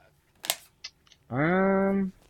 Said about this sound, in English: Nope, but I heard your rocking chair, Grandpa.